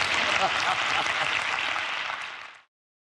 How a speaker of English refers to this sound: Come on, give the old man a round of applause.